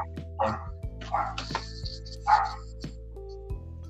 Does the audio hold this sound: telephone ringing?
no